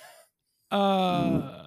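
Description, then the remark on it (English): A short pause, then a loud squeak of a foot rubbing on leather, buzzy and tonal like a fart, lasting about a second before trailing off. “It was my foot against the leather.”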